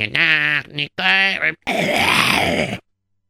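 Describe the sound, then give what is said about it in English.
A person clears their throat loudly: two short voiced, grunting bursts followed by a longer, harsh, raspy scrape, then silence. No talking. “Now, when I clear my throat, I don't sound like... Let me try this again.”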